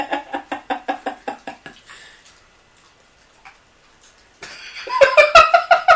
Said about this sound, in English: To clarify, my dog is eating a rawhide, so any munching noises is her. And now, listeners, we take you to the sound of a dog chewing!